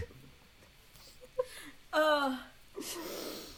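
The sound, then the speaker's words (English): A voice mimics the exaggerated, heavy breathing of Christian Stewart, with a short wheezy inhale, a voiced whimpering gasp, and then a long, loud breathy exhale. “It's Christian Stewart breathing noise.”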